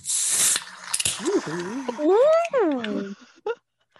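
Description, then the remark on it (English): A can of O'Hara's New Irish Stout Nitro with a widget cracks open with a loud, brief rush of hiss. A voice then follows with drawn-out, rising and falling wordless sounds. “New Irish Stout, the Nitro, the one with the widgets. It has a widget, unlike Guinness now. I'm going to open it.”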